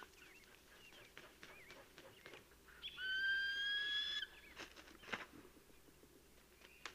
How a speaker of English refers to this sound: And that clattering sound is the eagle adding that stick to an already huge platform of a nest up there.